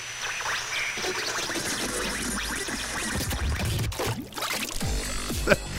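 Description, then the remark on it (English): Water splashes and sloshes in a steady, dense wash of noise, with a sharper burst of splashing near the end and no one speaking. “The splash is a nice touch.”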